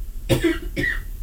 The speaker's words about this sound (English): She's coughing all over the place. That was one of those surprise dry throats where it just... Yeah. That's what happened in your throat right there.